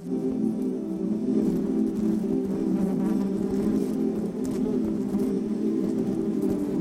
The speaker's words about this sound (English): Scientists have long figured out that bee colonies produce different sounds depending on the context. So, for example, when the queen bee die, they make a specific type of buzz.